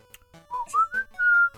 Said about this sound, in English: I'll entertain you with some whistling.